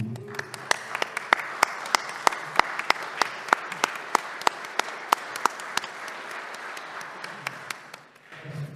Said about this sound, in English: I'd like for us to stand and give him an applause.